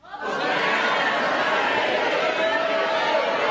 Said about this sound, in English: There are 20,000 of you shouting the same thing over and over again. And you could hear this grand shout coming up long before they ever reached the streets of Jerusalem. There are people shouting. Try it again.